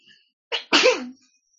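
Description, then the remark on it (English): A single loud sneeze with a short sharp intake followed by a bursting, breathy release, heard alone with no talking. “Bless you.”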